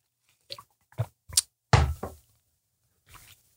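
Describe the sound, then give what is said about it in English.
Someone sips coffee: a few soft clunks of a cup being handled, then a brief slurping sip and a quiet follow-up sound, with no talking. “Oh my God, I got to take a sip of coffee because this one could get interesting.”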